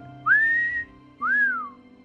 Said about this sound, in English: If you remember To Have and To Have Not, where she's like, You know how to whistle, don't you? You just put your lips together and blow.